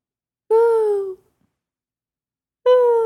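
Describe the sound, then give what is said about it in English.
A person imitates an owl with their mouth: two loud, breathy hoots, the first held about half a second with a slight downward slide, then a pause before a second hoot cut off at the end. “An owl. Is it an owl? Very, very right.”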